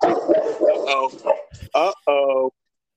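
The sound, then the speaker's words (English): A dog, Mulkeese, lets out two or three loud, sharp barks at people walking down the street, following a stretch of indistinct voices and background chatter. “It's prayer time at the mosque because Mulkeese is barking at people walking down the street.”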